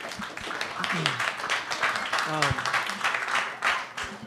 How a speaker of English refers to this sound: Hey, go ahead. You can clap. People said some good stuff.